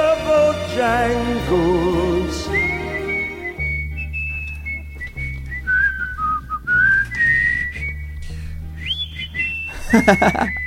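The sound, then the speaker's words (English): A man whistles the melody of a classic song live in a studio, holding long, clear notes that slide and glide between pitches, with some vibrato early on, over low musical accompaniment and no talking. “live in the studios doing the whistle from the classic tune”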